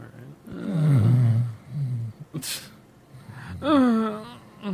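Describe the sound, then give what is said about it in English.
A person fakes an exaggerated snore, drawing out loud, rumbling vocal snores with a sharp snort in the middle, followed by a rising, whiny voiced sound, all prominent. “Well, I said I would snore in the intro, so no.”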